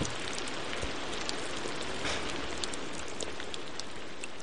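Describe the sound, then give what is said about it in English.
Steady rain pattering onto a surface in an ASMR sleep rain recording, a dense even hiss sprinkled with tiny distinct drop ticks, constant in level throughout with no voices, soft and calming. “Let's all chill out and relax to a little bit of ASMR Rain? Sleep Rain.”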